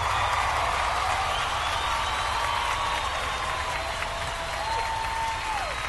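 A crowd applauds steadily for several seconds, dense clapping filling the whole stretch with a few thin whistles gliding above it, loud throughout.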